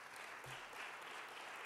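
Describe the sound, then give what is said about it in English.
Steady crowd applause from an audience voting with their applause for the next president of the United States to be named Clinton: a dense, even patter of many hands clapping at once, sustained without a break and fairly quiet overall. “Those of you who would like the next president of the United States to be named Clinton, please show a round of applause.”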